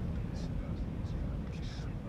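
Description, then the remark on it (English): A steady, roaring polar wind fills the scene, a deep continuous rumble much like an airplane, with faint airy hisses drifting over it. “I don't know how to explain this, but it made sounds that I could have sworn it was a plane or a train or voices.”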